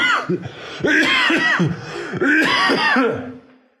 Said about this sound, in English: Mother of God. Excuse me. Serious podcasting, isn't it? Listening to a guy coughing in his hotel bed. A lot.